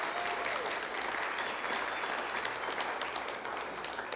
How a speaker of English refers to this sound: Let's give our moms one more hand clap today, if you wouldn't mind, please.